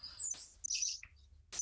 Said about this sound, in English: Can you hear that, guys? Birdsong. Yeah, this is Sefton Park.